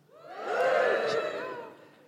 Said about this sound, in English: Give me a cheer if you're middle class.